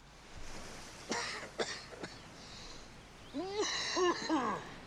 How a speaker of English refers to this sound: I'm a bit worried about that cough.